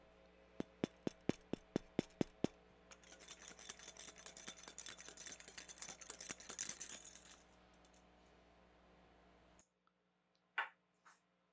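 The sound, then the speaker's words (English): A glass Christmas ornament is handled, starting with eight or nine sharp, evenly spaced glassy clicks, then a dense stretch of light tapping, scraping and clinking before it fades to near silence. “So here is your classic Christmas ornament.”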